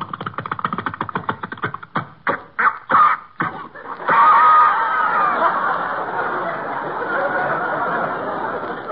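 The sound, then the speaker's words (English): A small pull-started generator engine, started by winding a rope around the flywheel and pulling, sputters in rapid, uneven coughs, chokes out several separate bursts, then catches and settles into a steady, noisy running drone, fairly loud. “Just wind the rope around the flywheel, and pull.”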